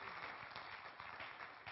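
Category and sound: crowd, audience clapping hands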